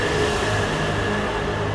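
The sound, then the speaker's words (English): A steady, loud rumble with a droning hum: train noise reverberating through a tunnel underneath train tracks while someone walks through it toward a city center. Continuous and unbroken, with no voices. “I'm again walking in a tunnel underneath the train tracks towards the center of the city.”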